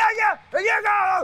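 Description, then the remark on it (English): A man bellows two loud, drawn-out bursts of wordless, gravelly gibberish, imitating an over-the-top late 1980s or early 1990s wrestler shouting a backstage promo. “It's just big, crazy men screaming at you.”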